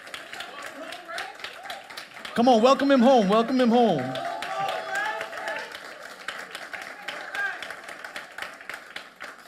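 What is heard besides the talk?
audience clapping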